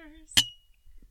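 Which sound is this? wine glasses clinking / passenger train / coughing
wine glasses clinking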